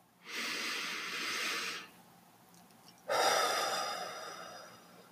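Two slow, deep breaths during a guided meditation, a long airy inhale followed after a pause by a strong exhale, with no talking.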